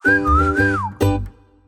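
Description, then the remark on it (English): Someone whistles a short, wavering melody, the tune gliding up and down for under a second before a brief breathy burst and a fading tail. “That I whistled an interesting product melodiously.”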